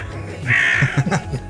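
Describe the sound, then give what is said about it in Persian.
A single harsh, raspy caw of a zagh (a crow) rings out, followed by a few short low murmurs that sound like someone speaking. “این زاغه کلاغ و زاغ میگه کلاغ سیاه”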